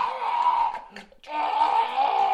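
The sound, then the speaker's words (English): A person imitates screaming as a sound effect with two long, loud, high-pitched shrieks split by a short breath-like break, with nothing else around them. “I'll do the bones cracking and the screaming.”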